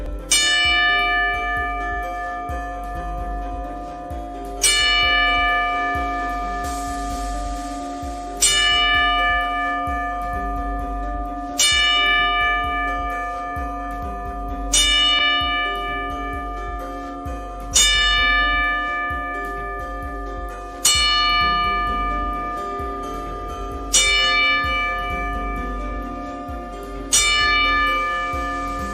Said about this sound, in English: So I wanted to do a 10-bell salute for her.